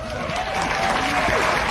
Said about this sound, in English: And then they all clap